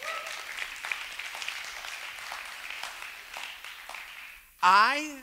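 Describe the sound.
Steady applause from a church audience during a sermon, a dense wash of many hands clapping at an even level for several seconds, before a loud, raised voice suddenly cuts in at the end.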